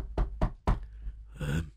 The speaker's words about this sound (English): Okay, here I go, knock on the door.